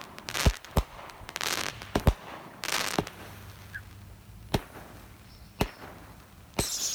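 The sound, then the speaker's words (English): A fireworks cake with mixed effects, including whistles, comets and crackle, goes off in a string of sharp booming pops spaced irregularly, with hissing bursts of crackle between them and a faint, thin whistle briefly rising above the noise. “We got whistle in that one. There's a lot of whistle in that one, right?”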